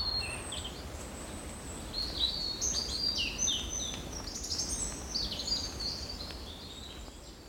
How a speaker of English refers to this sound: And so we've got wonderful old barn here and swallows. Just, well, they're everywhere. They're on top of the house, they're perched, they're zipping in and out to their nests.